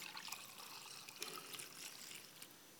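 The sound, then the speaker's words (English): A thin stream of liquid pours steadily into a communion cup, a soft, continuous trickle with slight splashy flickers, heard faintly and alone without any talking. “In the same way, Jesus took the cup and he blessed it and he poured it out.”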